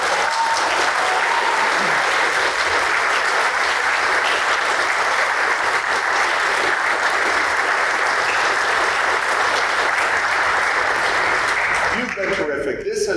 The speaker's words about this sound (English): that four of the best walkers down those roads are here, and I wish everyone would give them a rousing round of applause.